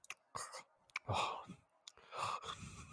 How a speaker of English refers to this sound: Just like uncomfortably breathing on the mic for an hour at a time.